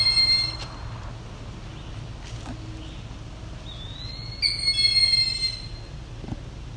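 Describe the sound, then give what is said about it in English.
An eastern wood-pewee gives a single slurred, rising whistle, clear and moderately loud over a steady low rumble, with a few faint thin high tones before it. “That's an eastern woodpewee calling.”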